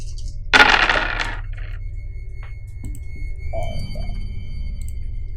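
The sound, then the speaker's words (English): Six dice clatter loudly across a hard table in one quick burst, landing on 6, 4, 4, 1, 2 and 3, then settle with a few faint knocks and taps while a soft, steady electronic hum lingers in the background. “Dice rolls are fucking... I've got to block off my little area so they don't...”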